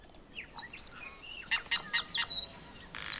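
Bellbird and tui birdsong rings out from the treetops of a forest at sunrise, a lively mix of clear whistles, bell-like notes and sharp chirps tumbling over one another, with no voices.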